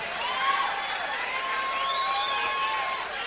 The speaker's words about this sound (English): He's been with me for about 8 or 9 years. Makes his home in Texas now. Nice round of applause to you with Mr. Rick Price.